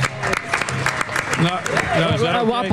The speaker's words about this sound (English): Give him a round of applause, this guy here.